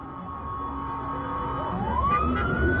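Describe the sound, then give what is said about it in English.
A police pickup truck's siren wails over steady traffic rumble as it drives through a crowd toward a burned-out police car, its tone sweeping upward as the vehicle approaches. Continuous, with no voices. “A truck coming in with sirens.”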